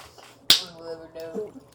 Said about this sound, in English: Ah, thanks, man. No problem. High five. Anytime.